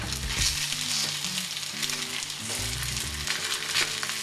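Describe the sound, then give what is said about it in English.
Steady, crackling sizzle of a schnitzel frying in a little hot oil in a pan, continuous, with bright hissy spatters and low pan rumbles underneath; no one speaks. “And hear it sizzle?”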